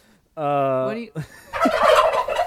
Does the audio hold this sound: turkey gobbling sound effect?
yes